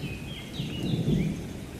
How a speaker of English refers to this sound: The rain was gentle at first, slowly turning into a light shower.